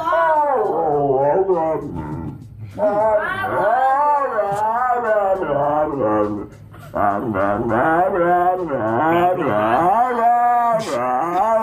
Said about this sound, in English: Oh, I have the dog that doesn't want to hear you talk. Have you heard this dog? Mm-mm. This dog's funny. Because it's just the dog, if you try to talk, the dog is just blah, blah, blah, blah, blah.